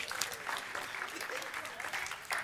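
Steady applause from an audience, a dense patter of many hands clapping at an even level for a couple of seconds, with a brief louder swell near the end.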